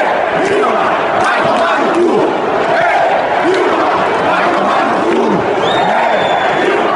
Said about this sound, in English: Now, for those of you who don't speak Portuguese, that's a stadium full of Brazilians chanting, "Hey, Dilma, go fuck yourself." Yeah, that's what they're actually saying.